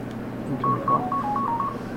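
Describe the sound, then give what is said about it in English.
A mobile phone rings with a quick, repeating electronic trill of alternating beeps over a low hum, no one speaking. “The often someone's phone is going off here.”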